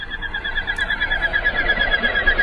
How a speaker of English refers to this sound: The duck is the Barrow's Goldeneye, whose scientific name derives from its heavy or ox-like head, and that it was first noted through a population found in Iceland. It's Bucephala icelandica.